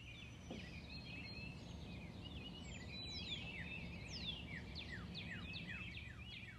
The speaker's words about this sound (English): Listen to the magical harmony of the birds.